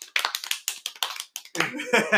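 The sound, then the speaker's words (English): A short burst of applause from a few people, sharp hand claps, then cheering voices and chatter rising over the last clapping. “Round of applause.”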